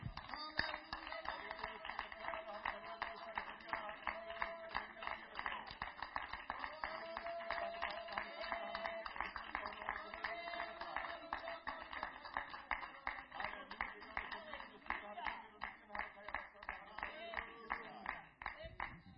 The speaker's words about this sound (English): Oh, let us shout the glory of the Lord right now in the name of Jesus. Oh, let's clap our hands, oh God.